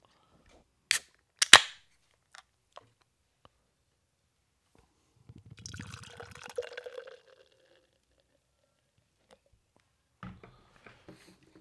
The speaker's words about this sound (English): Beer's poured out. It's looking hazy. It's looking medium bodied with a nice fucking head here.